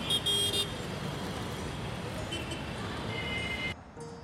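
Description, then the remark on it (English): Busy street traffic rumbles steadily while car horns toot near the start and again toward the end; the dense roar cuts off abruptly just before the finish. “Victor rushed down to the lobby, out the building, and into the street, chasing the papers into traffic.”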